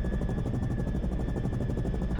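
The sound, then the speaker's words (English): A steady, rapid chopping of helicopter rotor blades with a deep rumbling drone and a faint whine, continuous throughout, with no voices. “I can leave the quopter here, where it is, go down, pick up the donuts, enjoy those sweet, sweet holes under the sublime swish of the rotor wash”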